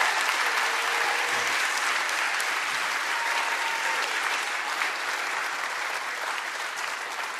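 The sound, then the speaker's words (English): An audience claps steadily for several seconds, a dense wash of overlapping hand claps at an even level that eases off only slightly toward the end. “You see that even your clapping is weak because you are not sure.”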